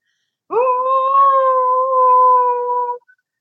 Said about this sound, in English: Now, you flick your vocal cords and you cover your mouth. And I'm literally going to scream into this towel on the count of three. One, two, three.